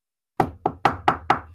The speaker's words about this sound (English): Do we knock? Yeah, we knock. I knock on the door.